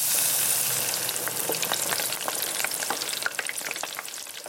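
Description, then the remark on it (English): Food sizzles steadily in a hot frying pan, a dense crackling hiss with scattered sharp pops and spits throughout, fairly loud, with no voices. “Get your bowls and napkins ready and cue the sizzle.”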